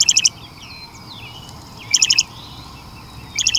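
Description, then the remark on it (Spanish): A loggerhead shrike, a songbird that is also a bird of prey and slightly smaller than a robin, sings three short, harsh, buzzy phrases spaced about a second and a half apart, clear, with faint chirps from other birds and a low outdoor rumble behind. “Pero en esta ocasión hablamos de un ave de rapiña que resulta también ser un pájaro cantor y que es un poco más pequeño que un petirrojo. Es el verdugo americano.”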